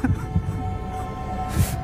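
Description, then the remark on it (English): A deep, muffled heartbeat thumps in lub-dub pairs, a few beats spaced apart over a steady low hum, with a brief airy hiss near the end. “His heart beat a wild rhythm.”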